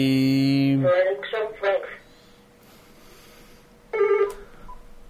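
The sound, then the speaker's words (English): A telephone rings with an incoming call from someone phoning in to talk: a loud electronic tone followed by quick pulsing bursts, a short lull, then another ring starts. It sounds clear, with no talking over it. “talk to us on the phone here in a few seconds.”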